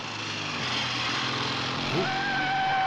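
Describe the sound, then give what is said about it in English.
A motorbike engine drones steadily, a continuous rough roar that holds throughout, with a thin higher whine creeping in toward the end, as a rider in an orange jumpsuit arrives on the motorbike at an airport. “But who's this mysterious figure just arriving on a motorbike in an orange jumpsuit?”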